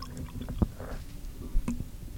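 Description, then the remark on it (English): A drink being poured into a cup, with brief wet gurgles and a couple of soft thumps against the cup over a low background hum; no one speaks. “let me pour myself some.”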